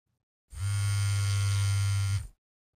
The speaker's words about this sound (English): My phone started to buzz. I looked at my phone. It was 3:33 a.m. and there was a message saying there was motion at the door.